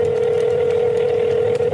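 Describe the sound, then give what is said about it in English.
A steady, unbroken telephone dial tone hums at a constant pitch for the full two seconds, loud, with no voices or keypad beeps. “Here is the phone call and the reaction.”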